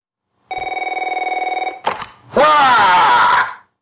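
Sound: telephone ringing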